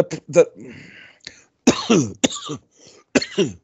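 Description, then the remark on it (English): A coughing fit from a person who got angry: several harsh, raspy coughs come in clustered bursts with brief pauses between them, loud and strained, with no talking. “And then you got so mad you started coughing.”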